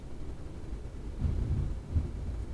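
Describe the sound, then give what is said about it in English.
Heavy rain outside in Alabama, a steady dull wash of noise with low rumbling swells that rise and fall, heard from indoors with no one talking. “I mean, it's really raining out there. It's for real.”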